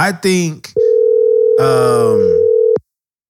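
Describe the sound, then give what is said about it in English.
A single steady phone ringing tone hums for about two seconds, loud, with someone talking briefly before it and a voice speaking over its middle stretch. “Come on, got to pick up.”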